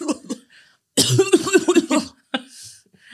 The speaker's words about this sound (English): you just coughed into the mic and kept going. You're wild, bro.